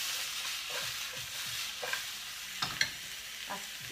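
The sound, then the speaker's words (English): Onions sizzle steadily in a hot pan, a continuous bright hiss broken by a few sharp pops and crackles, with faint scraping stirs underneath and no talking. “Anything you add onion with smells nice.”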